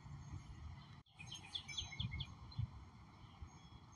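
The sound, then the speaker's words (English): Birds chirp and sing in a home garden in a quick run of high, bright notes, fairly soft, over a low steady background hum with no talking. “I want you to hear the birds today.”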